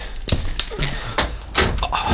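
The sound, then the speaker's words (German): A car door shuts with a solid thunk as a man gets out of a car, a green or grey SXX Touring, that has just parked at a campsite, surrounded by a few other short knocks and clunks, with some faint murmuring. “Da parkt eben ein ganz besonderer Wagen ein.”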